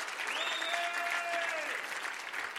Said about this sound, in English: Come on, give the Lord a great clap offering, amen.